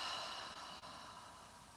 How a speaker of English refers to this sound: Breathing in again, nourishing and healing. Nice loud exhalation.